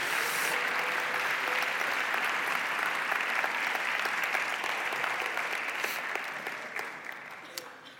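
A crowd breaks into steady, sustained applause for everybody who helped out that day, dense clapping at an even loudness that thins slightly toward the end as individual claps start to stand out.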